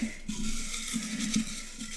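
Paper topic slips rustle and rattle inside a ceramic pumpkin jar as it is shaken to shuffle them, a steady papery patter with faint hollow clinks, lasting a couple of seconds with no talking.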